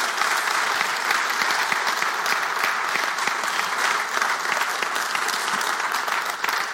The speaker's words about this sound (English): You're allowed to clap. Go ahead.